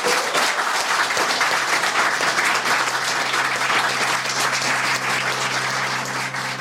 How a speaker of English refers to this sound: Please join me in a round of applause